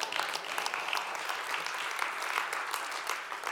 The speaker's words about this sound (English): And when we trust him with our entire lives, we receive from him his entire life. Amen. That's a good place to clap your hands.